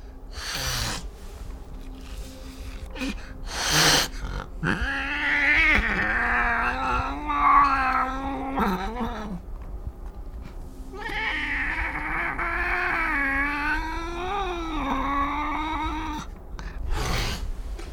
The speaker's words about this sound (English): Say, I don't normally torture my cat with mirrors, but since we are attempting a controlled experiment, this is a rare occurrence.